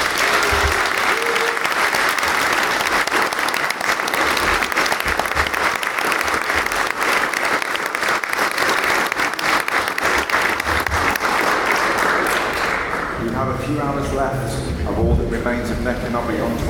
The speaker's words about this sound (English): Thank you to our illustrious panel. And I think we should give everyone and yourselves a massive round of applause.